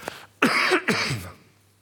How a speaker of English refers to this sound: Just going to have a little cough, excuse me.